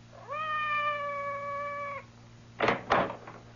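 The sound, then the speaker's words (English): Madame's cat, Francois, gives one long, steady, drawn-out meow outside a door lasting over a second, then two quick, sharp thumps follow close together, like knocks on a door. No voices are heard. “It sounded like Madame's cat, Francois.”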